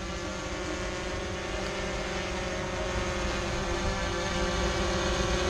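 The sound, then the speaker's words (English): A steady, droning buzz from the helicopter-blade rotors of two Sunwoo Systems security drones fills the whole stretch, loud, with a constant whirring hum and faint tonal whine and no voices. “There was a sudden buzzing sound.”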